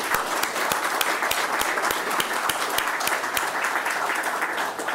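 A crowd at a morning air access event in St. John's applauds community leaders, including the head of the St. John's Airport Authority, with dense overlapping hand claps forming a continuous, loud wash of sound and a few sharper individual claps standing out, and no one speaking.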